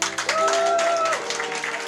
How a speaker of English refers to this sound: That was excellent. Yeah, let's give her another clap.